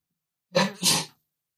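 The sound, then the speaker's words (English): A single sneeze, a quick two-part "ah-choo" with a short inhale and a sharp, breathy burst, slightly muffled, made while turning away from the microphone, with silence around it. “Bless you.”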